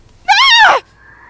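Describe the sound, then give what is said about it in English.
A single loud, high-pitched scream from inside a building bursts out for about half a second, its pitch rising then sliding down before cutting off into near silence with a faint lingering tone. “A scream from inside jars him.”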